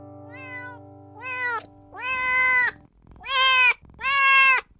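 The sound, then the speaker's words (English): A cat meows five times in a row, each cry longer and louder than the one before, with a drawn-out, insistent tone. It is clear, with no talking. “But first, we talk unwanted cats in Kawartha Lakes, and not just any kinds of cats, and not just finding any kind of adoptive home for them.”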